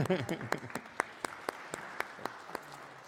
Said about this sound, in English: After church today, we have a celebration for paying off our roof and boiler loan. Let's clap again for that.